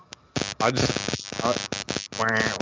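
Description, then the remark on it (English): Loud, harsh static crackle with a buzzing, hum-like tone coming through a computer, cutting in and out in choppy bursts. It fills the whole stretch and sounds like garbled, distorted interference. “I'm hearing like static like crazy.”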